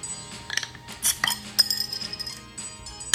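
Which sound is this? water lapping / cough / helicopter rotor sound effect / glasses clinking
glasses clinking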